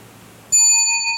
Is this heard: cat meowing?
no